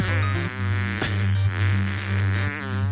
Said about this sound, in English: You got a speakerphone option? I'm trying, guys. Okay. We need to hear these farts.